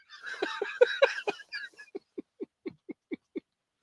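A donkey brays in a Christmas song, opening with a rough, drawn-out harmonic cry and breaking into a quick, even string of about eight short, punchy honks. It's heard alone, with no talking.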